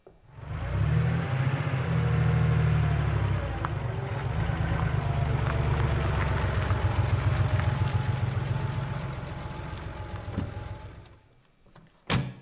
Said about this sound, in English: I think he's coming this way. That's not a Model T. It's an old farm truck.